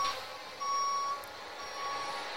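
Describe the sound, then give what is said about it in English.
Quiet, steady electronic beeping from a forklift truck reversing as it goes over to a shipping container, over a low background hum with no voices. “There's a forklift truck going over to a shipping container.”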